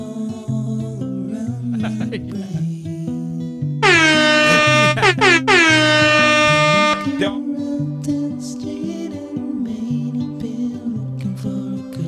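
Two long, blaring air horn blasts, loud and brassy with a slight pitch waver, sounding back to back over a steady musical backing that continues after they stop.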